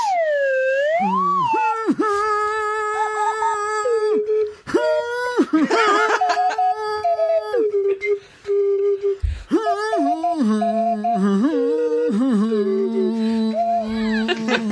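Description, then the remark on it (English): A swanee whistle plays the Doctor Who theme with a reedy, buzzing tone, swooping up and down between long held notes and short glides, loud and continuous throughout. “Would you care to join me in the Doctor Who theme on Swanee Kazoo? Swanee Whistle?”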